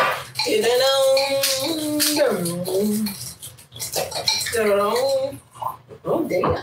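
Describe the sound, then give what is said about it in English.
Yellow Tail wine gurgles from a bottle into a glass in two steady pours, with glassware clinking lightly and muffled voices murmuring in the background. “I'm not trying to pour heavy.”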